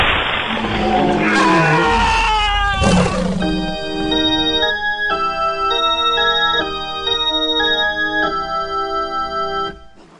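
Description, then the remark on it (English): A harsh, roaring burst gives way to a steady electronic pulse from radio equipment: a buzzy, harmonic tone repeating in a regular ticking rhythm for several seconds, with no voices. “If I can just set up a repeating pulse through this radio equipment.”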